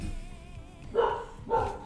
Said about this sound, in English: I feel like if I just talk, you won't be able to hear the dog. And if you can't hear the dog, we can just accept this as what do you call that thing? A casualty of war. Because there's nothing we can do. She's not going to stop barking.